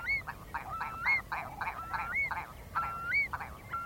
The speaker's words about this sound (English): But in the winter as well, they have a call which is like a curlew, which is where they get their name from. And that's much more like a sort of arrow firing out across the mudflats. It's very evocative of wild places.